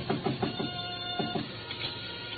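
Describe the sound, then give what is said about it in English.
Knocking on Shin Yoke's back door in Chinatown: a quick run of raps, a short pause, then another brief burst of knocks, moderately loud over a faint steady hum, with no one speaking. “Still in front of me when I knocked again at Shin Yoke's back door.”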